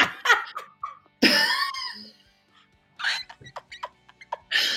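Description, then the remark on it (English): A person imitates dolphin sounds with high, squeaky whistles and rapid clicks in several bursts, loud, broken by short pauses, with no ordinary talking. “Let's imagine we're on holiday somewhere glorious and hot and we're going on a little kayak in the sea, and then suddenly out of nowhere, what's that in the distance? It's only a bloody dolphin, isn't it?”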